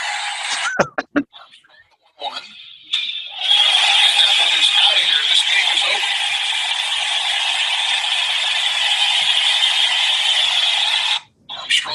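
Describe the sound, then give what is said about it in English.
After a few sharp knocks and a brief near-silence, a huge baseball stadium crowd erupts into a loud, sustained roar after Sterling Thompson's walk-off home run, holding steady for several seconds before cutting off abruptly. “You hear the roar of the crowd.”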